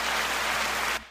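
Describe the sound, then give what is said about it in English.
A burst of applause sound effect, a dense, steady crackle of many clapping hands at full volume that cuts off abruptly after about a second. No one speaks over it. “All right, get hit the claps.”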